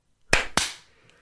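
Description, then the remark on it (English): Two sharp, loud hand claps in quick succession, about a quarter second apart, each a crisp smack with a short ringing tail, like clapping to switch on a clap-activated device. “Clap on technology engaged.”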